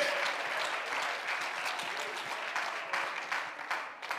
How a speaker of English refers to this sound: You need to clap your hands and thank God.